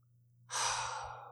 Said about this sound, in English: Look at your back. You're breathing so deep, I can feel you just holding you from behind.